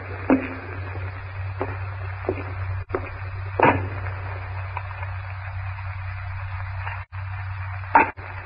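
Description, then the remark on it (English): An axe chops firewood in a strangely silent jungle with about five or six sharp, ringing strikes at irregular intervals, each leaving a brief echoing tail over a low, steady background hum. “The sound of Greystoke's axe echoes through the strangely silent jungle.”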